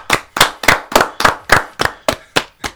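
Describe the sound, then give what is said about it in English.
Steady hand claps, about ten sharp smacks in an even rhythm, fairly loud with no talking over them, clapping for footballer Rafael Varane. “Let's clap for Varane.”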